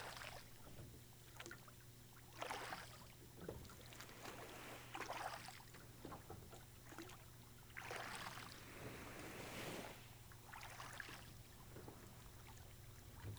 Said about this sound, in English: You resume rowing to the small island. Which is getting closer now.